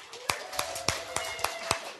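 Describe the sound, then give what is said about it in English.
A handful of sharp claps from an audience welcoming a staff counselor to the stage, in a steady, evenly spaced rhythm, about six in two seconds, moderately loud over a faint room hum. “Yeah, you guys don't clap when I come up here.”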